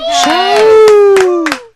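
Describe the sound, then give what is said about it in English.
Applause on a show as a current events segment is introduced, with a few sharp, scattered claps under a sustained, wavering vocal whoop that holds steady and then slides downward before the sound cuts off. “I love the applause.”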